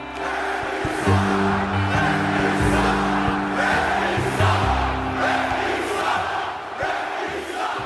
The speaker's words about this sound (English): Does the sound of those 18,000 people screaming at you or booing you, does it sound any different than it sounded when you started? Yeah, there's a little more anger involved